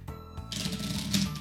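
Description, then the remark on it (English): A deck of 'would you rather' question cards is shuffled, a quick run of dense, papery riffling clicks that swell briefly before ending, with no voices. “I would love for you to, but should I get the shuffle first, or do you want to guess? Give me that shuffle.”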